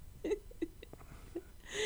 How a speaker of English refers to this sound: Oh, and they're not big cups either. I ain't drinking out of cups. There's little tiny hiccups.